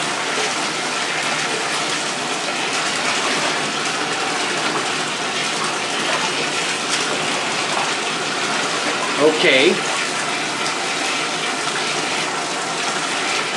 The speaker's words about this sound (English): But I think I made a little too cold this time. But all right, we're warming the water up here, adding some hot water to the tub.